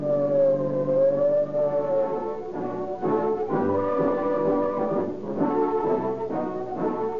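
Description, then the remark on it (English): A loud siren shrieks continuously, its rising and falling wail sustained over a dense, harmonically rich tone with no talking. “Whenever you hear the shriek of a siren, when police cars whiz”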